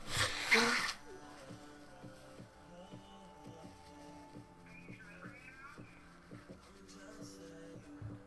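A loud, forceful nose blow, a single noisy honking burst lasting about a second, followed by quieter steady tones and soft rhythmic background sounds.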